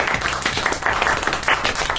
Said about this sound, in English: A gentle round of applause, not too close to the microphones, please, for the new world champion, Lewis Hamilton.